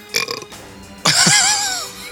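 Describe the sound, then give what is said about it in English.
A short, rough sputter, then a loud, drawn-out belch lasting about a second, its croaky pitch wavering and sliding downward before trailing off. No one speaks over it. “Excuse me. Seriously? That's how excited you are, huh?”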